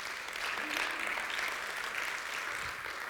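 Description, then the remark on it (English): A crowd gives God a round of applause, a dense wash of many hands clapping that holds at an even, fairly loud level for the whole stretch without fading. “Yeah, you can give God a great round of applause.”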